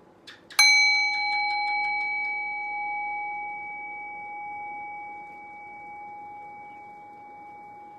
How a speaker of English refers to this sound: Now ring the sound of the bell again. Rest your awareness on the sound of the bell. Allow the decay of the bell to guide your awareness into silence.